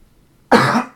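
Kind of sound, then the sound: human body sound, cough and throat clearing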